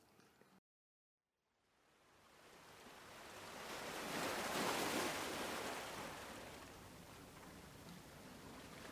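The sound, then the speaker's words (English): Sea waves wash onto the shore after a brief silence, a broad hiss swelling to a loud crest midway and then settling into a steady roar of surf, with no voices. “Beside the sea, five accessible trails to help you wind down.”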